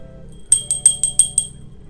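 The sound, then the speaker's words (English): A small bell, rung to call in the divine spirit at the start of a spiritual reading, rings six times in quick, even succession, each bright, high-pitched strike shimmering briefly over a low background hum. “And I am calling in, ring my bell.”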